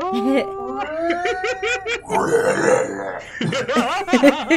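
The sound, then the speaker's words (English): A voice imitates a purple worm storm siren in a drow town, holding a loud, steady wailing tone for about two seconds, then breaks into a rough, gravelly burst and wobbling laughter-like vocalizing. “They have, like, storm sirens, but it's just the purple worm siren.”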